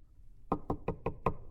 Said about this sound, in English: Some guy knocked on my door.